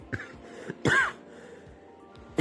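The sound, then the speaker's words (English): A few rough throat-clearing bursts and a cough, loud and abrupt, separated by brief pauses, with no talking. “we're going to have a lot of errors and a lot of coughing.”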